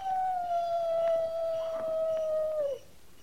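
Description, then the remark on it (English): A single long, steady howl from a coyote, holding one drawn-out pitch for almost three seconds before dipping and cutting off, heard moderately loud with no talking. “That's just a coyote.”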